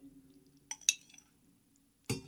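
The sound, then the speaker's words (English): A miniature spoon clinks against glass while maraschino juice is added by the teaspoon: two quick bright taps with a short metallic ring, a pause, then a duller third knock. A low steady hum runs underneath, and nobody speaks. “So with my miniature spoon here, I'm going to destroy my studio.”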